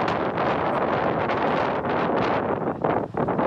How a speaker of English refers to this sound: And now it's fucking windy again.